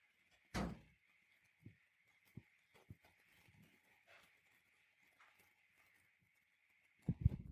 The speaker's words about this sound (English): Sorry, I have to let the cat out the door. He's really complaining. Give me a second.